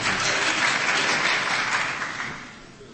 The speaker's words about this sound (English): The courtroom will be cleared if there's any more clapping.